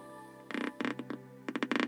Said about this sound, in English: That noise that you just heard, by the way, was my fingernail squeaking against the piano bench. I'll do it again.